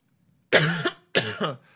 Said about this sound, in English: Coughing because I was screaming so much.